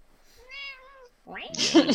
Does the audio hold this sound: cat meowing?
yes